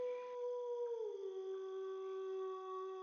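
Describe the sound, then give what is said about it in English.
A single long wolf howl at a campsite, sustained and tonal, sliding slightly lower in pitch partway through and then holding steady, heard faintly with no voices. “Mostly you hear them since their howls travel so far.”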